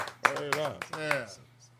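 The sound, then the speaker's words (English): A few sharp hand claps land in an uneven rhythm, about four in under two seconds, over a raised voice that keeps sounding beneath them. “Hand claps again.”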